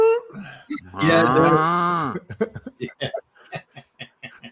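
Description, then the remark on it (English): A voice imitates the air horn blown at 6:30 at a sale to signal the drawing of names, with one loud, steady, brassy blare lasting about a second that drops slightly in pitch at the end. Quick chatter and laughter follow. “Air horn is what they blow.”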